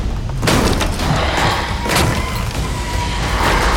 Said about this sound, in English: The Ponaturi are trying to break through the walls.